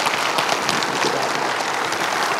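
A church audience claps steadily together after a baptism, a dense, even wash of many hands at full volume with no pauses, without any voices rising above it.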